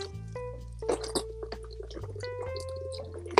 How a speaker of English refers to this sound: Let me drink water.